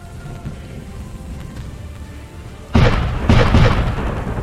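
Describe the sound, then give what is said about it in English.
Cannon fire: after a low, rumbling ambient bed, two loud booming blasts hit in quick succession and roll into a sustained, thundering roar. No one speaks. “Cannons fire.”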